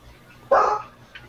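A dog lets out one sharp, loud bark, followed by a brief faint yip a moment later, against a quiet background.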